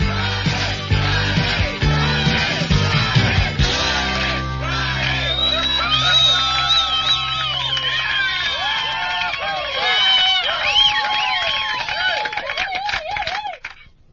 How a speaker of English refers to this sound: Thank you very much for that reception there and that applause.